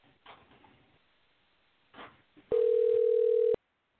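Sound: telephone call ringing out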